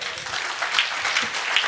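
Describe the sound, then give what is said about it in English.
An audience at King's Church applauds during a sermon, clapping for God: a dense wash of many hands clapping at once with no pauses, holding an even, fairly loud level throughout. “Is that not something to clap for God?”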